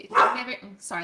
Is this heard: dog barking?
yes